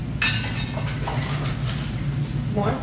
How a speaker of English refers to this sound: So we're going to do the ice in two stages. And let's have the people in the middle take your ice scoops and go first. Do half a scoop of ice in your glass. Yep. And just kind of pour it in. And stir that with your spoon.